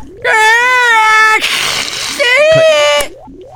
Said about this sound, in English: have you heard a light bulb screaming? Yeah, that one time. Here, listen to this.